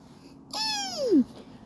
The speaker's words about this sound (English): It's Mini-Me. It's just a bird. I'm connecting with nature.